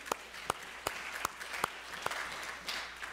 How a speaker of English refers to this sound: They always do a wonderful job, don't they? They do a great job. And yeah, we can clap.